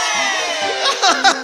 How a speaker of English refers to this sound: You take aim, a breath, then you let loose. The crowd goes wild.